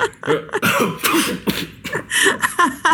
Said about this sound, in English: That was also a real cough.